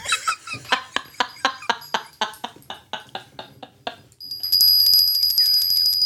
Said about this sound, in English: Can I have the bell?